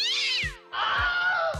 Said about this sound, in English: Meow. That was cat.